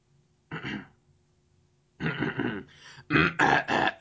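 A person's harsh, raspy hacking cough, like a cat bringing up a hairball: one short hack, a pause, then a rougher run of retching coughs that grows louder toward the end.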